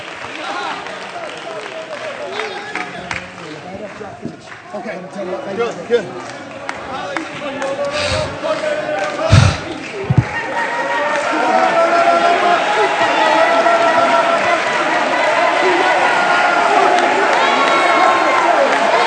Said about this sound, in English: I feel faith. You ought to clap your hands. You ought to shout. You ought to speak in tongues. You ought to release faith.